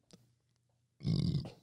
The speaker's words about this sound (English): That was like Corona America burp.